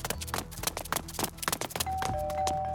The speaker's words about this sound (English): The field agents rang the doorbell over and over.